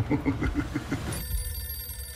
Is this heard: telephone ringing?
yes